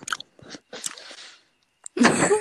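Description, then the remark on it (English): Wet slurping mouth noises: a few short smacking bursts, a longer sucking stretch, a pause, then a louder, rougher slurp at the end. “Stop making slurping noises. It's not nice.”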